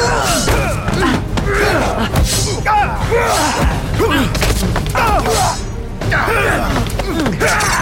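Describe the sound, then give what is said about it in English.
A rapid, continuous flurry of punching fight effects: dense, loud thuds and whacks landing irregularly for several seconds, mixed with vocal grunts and exclamations throughout. “More punching, Logan. Less arguing.”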